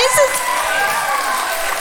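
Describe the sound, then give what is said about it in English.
An audience claps steadily for a woman coming up on stage, a dense, even wash of many hands with a few cheers mixed in and no single claps standing out. “needs a great big clap.”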